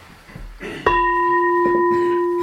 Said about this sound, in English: so beginning and ending with the bell